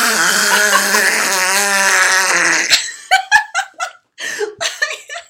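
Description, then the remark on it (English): A voice imitates a father's snoring with a loud, sustained, wavering nasal drone for nearly three seconds, then dissolves into choppy bursts of laughter. “Like I wish, is it totally inappropriate for me to like imitate his snoring?”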